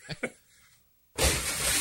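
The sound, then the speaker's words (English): Two brief knocks and a short silence, then a sudden, loud crash of a deer smashing through a glass window to get out of a nursing home in New York, with bright shattering noise that continues to the end. “But what the deer really wants is to get out. Yeah. And it does so by crashing through the window.”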